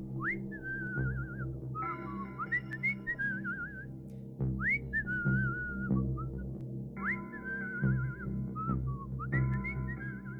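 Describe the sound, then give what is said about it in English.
An aged carver whistles a wavering, melodic tune in repeated phrases with rising slides and trills, over a steady low instrumental background, clear with no talking. “The camera pans out as the aged carver continues to whistle.”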